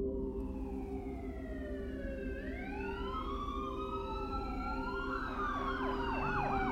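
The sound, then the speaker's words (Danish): Ambulance and police sirens overlap in the early morning in western Reykjavik, Iceland, one slowly wailing up and down while another joins with a faster warbling yelp, both loud and steady over a low rumble of traffic. “Samtidig ringede Tonys mor efter politiet, og lyden af de to forskellige sirener blandede sig i den tidlige morgen.”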